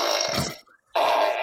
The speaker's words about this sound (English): That was the fart button.